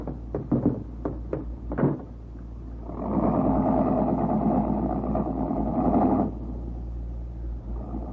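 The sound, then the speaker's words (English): A car engine hums steadily throughout, swelling into a louder, rougher run for a few seconds mid-clip. A quick series of sharp knocks sounds at the start. No one speaks. “Why don't you let me stop the car?”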